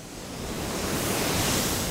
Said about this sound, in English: We stand above a surging spray of water that's about to leave the plant and enter the Willamette River.